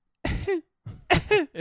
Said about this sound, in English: Actually, I was negative for COVID because when I went to the urgent care, that's the first thing they did. They tested me for COVID. I have a cough.